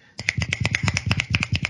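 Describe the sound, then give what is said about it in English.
A quick, steady run of about a dozen crisp finger snaps, beatnik-style applause, each a sharp click in an even rhythm with no talking. “That's the old beatnik clap for you. A couple of snaps.”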